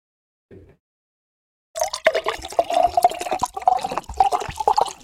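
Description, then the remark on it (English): A drink is poured into a tall glass: after a short quiet pause and a faint clink, a steady gurgling, splashing stream runs for several seconds with no talking. “Let me just pour me another glass.”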